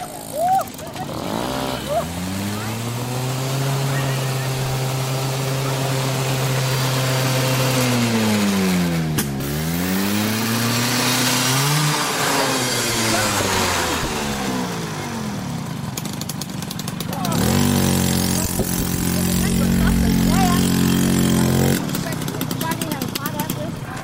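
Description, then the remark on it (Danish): A small moped engine screams at full throttle, loud, its whiny pitch climbing, dipping and surging again before settling into a steady high-revving drone, after its rider lost control and fell over. “Ja, hun væltede, og så kørte den med fulde skrue, hendes knallert.”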